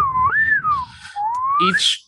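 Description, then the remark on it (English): A slide whistle plays alone, its clear reedy tone gliding up, sagging down, then swooping upward again in a short, wobbly run. “It's a slide whistle.”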